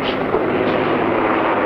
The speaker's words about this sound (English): They're practically running over everybody and running the plane all over the grounds of the airfield, and then they take off